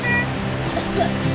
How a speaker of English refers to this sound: All that rain, yee-haw! The current was so fast. Oh, the key yeah. to riding a river of white water, just go with it.